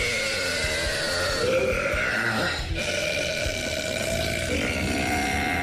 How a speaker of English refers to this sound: And here is the world record for the loudest burp. Ready? Yep.